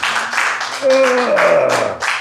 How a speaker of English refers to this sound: The energy in the room is undiluted, awkward. The applause is one of pity and confusion.